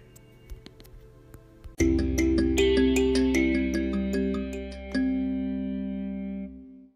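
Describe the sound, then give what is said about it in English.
A mobile phone rings with a loud electronic ringtone melody of steady repeating notes lasting about five seconds, preceded by a few faint clicks, with no one talking. “My phone was ringing.”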